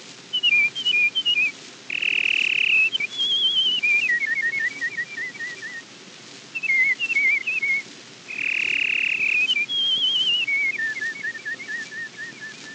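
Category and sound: bird, song sparrow song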